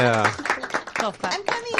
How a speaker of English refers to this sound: Very classy, very classy. Yes. Yeah. Golf clap.